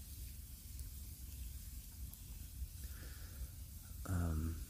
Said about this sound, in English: This fire is hissing. It's weird. It must be moisture in the wood, but this wood is burning so fast that it's got to be super dry. I'm not sure, but this hissing thing is new, and it's cherry wood that was chopped down at least 2 or 3 years ago